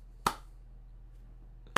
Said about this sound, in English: You are gold, bro. You get the golf clap for that.